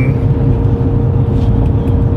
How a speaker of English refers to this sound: But, that's a big truck.